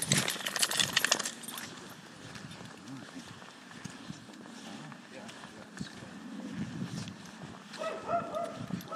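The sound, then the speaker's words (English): Another dog barks a few times outdoors amid busy background noise, with footsteps or hoof-like clopping and faint, muffled voices. “And there's another dog.”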